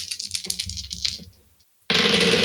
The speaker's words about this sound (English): Jesus, that was a lot of dice. That was 3 dice. It sounded like a lot more. It sounded like 6 or 7 dice. No. This is just 3d6.